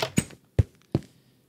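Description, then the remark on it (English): A door opens with three heavy clunks spaced about a third of a second apart, each a sharp thud that fades quickly, with no voices present. “Let's go through the door.”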